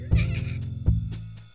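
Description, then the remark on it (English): A small cat named Steven lets out two short, thin meows in quick succession, each one a brief breathy whine with no talking around it. “You do have the most pathetic little meow.”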